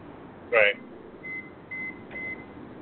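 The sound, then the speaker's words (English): Electronic beeping like a smoke detector: one louder chirp, then three thin, evenly spaced beeps, fairly quiet against a low background hum. “Somebody just went beep, beep, beep, and I looked up at my smoke detector, and it ain't me.”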